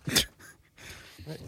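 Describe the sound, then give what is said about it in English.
A dog gives one short, sharp bark or yelp, followed after a pause by a softer, brief whining sound, both fairly quiet against a hushed background. “Shh, dog.”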